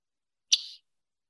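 A single short, buzzy Scarlet Tanager call note, sharp at the start and trailing off quickly, heard clearly on its own against silence with no talking.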